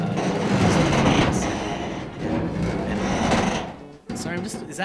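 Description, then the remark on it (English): Loud metal creaking and grinding over a steady mechanical rattle, continuous for several seconds with a brief drop just before the end, as indistinct voices murmur underneath. “Do you hear that loud metal creaking?”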